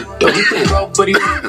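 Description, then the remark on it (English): Two loud, raspy coughs, one after another with a brief gap, harsh and throaty like clearing a smoke-irritated chest, with no talking. “Coughs are courtesy of original marijuana detention.”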